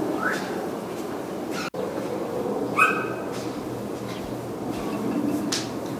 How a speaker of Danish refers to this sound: Nu skal du høre, hvordan det lød hver dag, da jeg vågnede nede i Lissabon. Og det er, ja, det er den der. Og så prøv at lytte til, hvad den her fugl siger der.